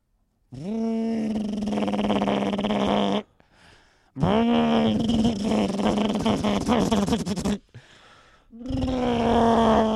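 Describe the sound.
A voice mimics a car engine struggling to start: three loud, buzzing, growly bursts, each rising in pitch then droning and sputtering for a few seconds, separated by short pauses.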